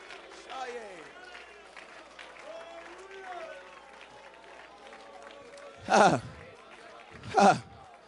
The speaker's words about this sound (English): Lift your hands and clap unto the Lord. I wish you would respond for a moment.